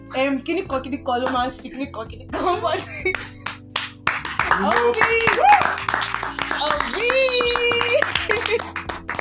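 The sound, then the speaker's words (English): An audience gives a woman a round of applause: scattered, irregular claps running through the whole stretch, mixed with voices and steady tonal sounds, growing denser and louder in the second half. “please, everybody, give her a round of applause.”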